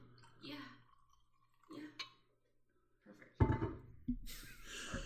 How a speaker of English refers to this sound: especially because I'm pouring it right into the mic. Pour it. Yeah.